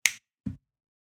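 Two finger snaps in quick succession, the first crisp and bright, the second duller and lower, followed by silence. No one speaks.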